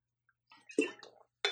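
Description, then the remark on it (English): Someone sipping water: a soft tick, then a short run of slurping, wet mouth noises, and a final brief gulp-like burst. Moderately loud, with no talking. “Okay, so I have a little drink of water here.”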